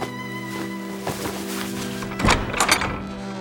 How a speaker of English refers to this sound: Seeing she was cornered, Psyche slipped inside her chamber and into bed. A moment later, the door flew open and the king stormed in.